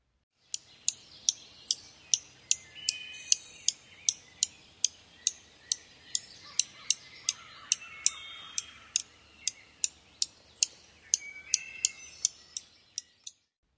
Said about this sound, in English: So one more time, here's the junco call.